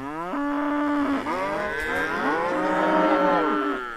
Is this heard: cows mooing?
yes